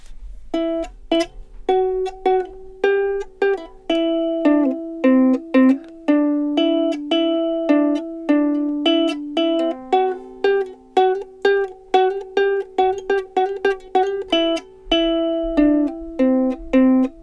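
A plucked string instrument plays a lively melody alone, with steady rhythmic strums and picked notes ringing out clearly and close for the whole stretch, no voices.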